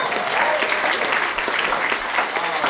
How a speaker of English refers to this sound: Hey, where's your family from? Brazil, clap it up for Brazil.